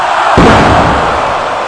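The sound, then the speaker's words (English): A single heavy super backdrop slam, delivered from the turnbuckle onto a wrestling mat, lands with a deep, booming thud that rumbles and fades over a second, set against a steady wash of loud background noise. “Kane climbed up behind him and slammed him with a super backdrop.”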